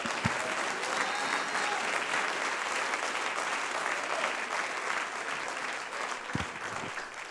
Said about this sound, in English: God has given you the power. God has given you the spirit to push back against this world. Somebody clap your hands to the Lord.